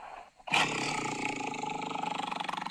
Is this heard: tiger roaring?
yes